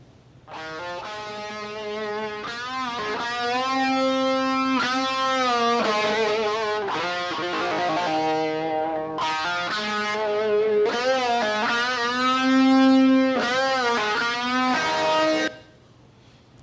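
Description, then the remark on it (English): A screaming, distorted electric guitar wails through a rock melody with long sustained, bending notes and rich harmonics. There are no pounding drums, and the guitar plays loud and continuous before cutting off. “So, no loud drums. We know what that tune is, but the screaming guitar gives us a message, doesn't it?”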